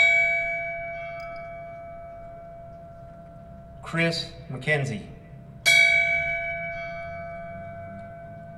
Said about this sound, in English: The pipes and bells now toll for you. Then he read the names of the 19 fallen, intoning each with a crisp bell ring.